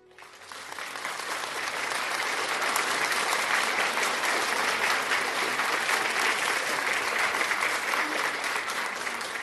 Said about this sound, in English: Then you clap your hands for Jesus.